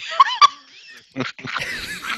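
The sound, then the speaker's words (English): Someone slurps beer loudly into a microphone, starting with two sharp squeaky, whistling sucks, then a run of wet, gurgling sips with a noisy, bubbling texture. No one speaks. “As I slurp my beer.”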